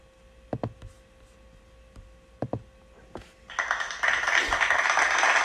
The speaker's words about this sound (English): Thank you for clapping.